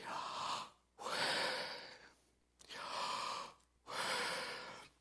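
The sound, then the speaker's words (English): Slow, deliberate breaths alternate in and out, four broad airy rushes separated by brief pauses, fairly loud, with no talking. “So when you breathe in, that's the YH, and when you breathe out, that's the WH.”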